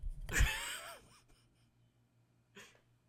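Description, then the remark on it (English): Heavy breathing right up against a microphone: a loud, rough exhale with a rumbling blast of air, then after a pause a second, softer breath. No talking. “You were breathing really hard into my ear.”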